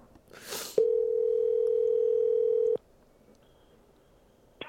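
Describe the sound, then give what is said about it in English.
A phone line's ringback tone: one steady, low-pitched ring lasting about two seconds, loud and clear, after a brief rustle, followed by quiet line hiss. No one speaks. “I'm going to call his number.”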